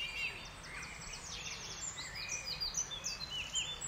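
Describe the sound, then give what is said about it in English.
A dense dawn chorus of many birds singing at once in an orchard, overlapping chirps, trills and whistles from several directions, continuous throughout with no voices. “Celebrating the Dawn Chorus of Birdsong”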